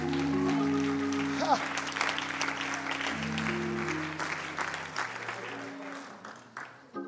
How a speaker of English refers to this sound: Oh, somebody clap your hands and thank the Lord.